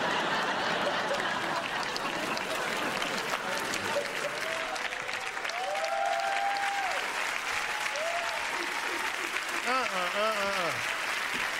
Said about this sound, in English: Even the white dude is clapping.